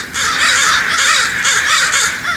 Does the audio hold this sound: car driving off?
no